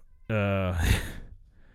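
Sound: cat meowing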